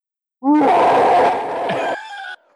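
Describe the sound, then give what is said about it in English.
A person lets out one loud, raspy roar, imitating a monster. It rises from a brief tonal growl into a harsh, noisy bellow, then tapers into a short strained tone. “So roar. Roar.”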